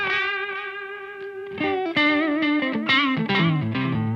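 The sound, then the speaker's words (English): An electric guitar drenched in reverb and modulation, with a swell effect brought in and out, holds one long swelling note, then plays a short melodic phrase of ringing notes, loud with no voices. “So that swell effect, does that come in to kind of emulate that?”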